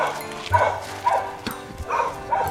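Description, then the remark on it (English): A dog barks several times in a loose, uneven series of sharp barks, with a faint outdoor background underneath and no one talking. “And then she saw that cute dog on the beach.”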